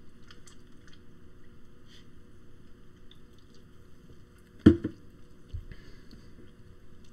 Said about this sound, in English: I need to take a sip.